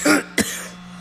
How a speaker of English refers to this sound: You hear me coughing.